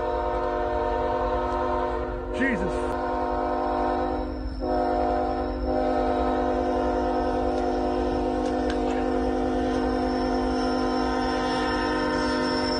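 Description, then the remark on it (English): A freight train's horn blares continuously as it approaches people on the railway tracks without stopping, a loud sustained multi-tone chord over heavy rumbling, with a brief startled voice exclaiming partway through. “Here's a little sound of the guys jumping in front of a train and saying, oh, it's not going to stop.”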